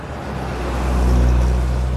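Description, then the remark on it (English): Trucks circle through the streets, a deep steady engine drone that swells louder midway as one rolls past, with no voices over the traffic. “Cries, moans, and trucks circling like sharks, carting away malnourished bodies lying lifeless in the streets.”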